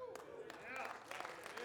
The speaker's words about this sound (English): Yes, that deserves applause.